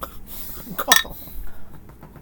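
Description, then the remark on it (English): A single sharp clink of a glass being set down on a hard surface, briefly ringing against faint background noise with a few soft knocks around it. “Wow, we claimed he was just gonna fucking put the glass down.”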